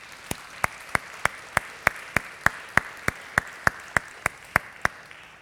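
Steady, evenly paced clapping: about seventeen sharp claps in a regular beat roughly three per second, moderately loud over a faint background hiss, with no voices.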